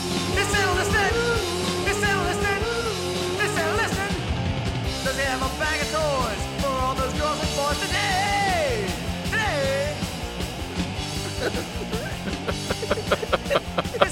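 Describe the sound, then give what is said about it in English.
A loud, dense, short punk rock holiday song plays throughout, with shouted, screaming vocals over distorted guitars and pounding drums, building to a burst of hard drum hits at the end. “So I listen to that and I think to myself, this is the perfect song for people who want to scream about 2020 and the agony of it.”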